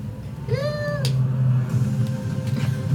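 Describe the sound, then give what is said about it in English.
A single goat bleat from a video, about half a second long, rises in pitch and then holds a nasal, wavering tone over a steady low rumble, ending in a brief noisy burst. “one of those goats that's like, trouble. Love that video.”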